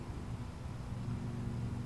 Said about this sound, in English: Okay, I can hear a car in the background, car, or yeah, like a motorcycle possibly.